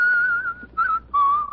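A person whistles a short tune in three clear, sustained phrases at a fairly high, steady pitch, the middle note briefer than the others, with no talking.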